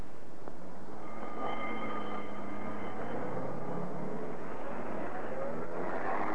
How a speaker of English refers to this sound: The ambulance drove off to the local hospital.